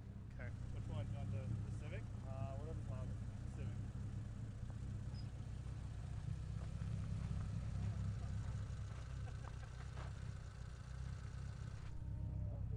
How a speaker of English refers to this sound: Release car. I want to hear the car go.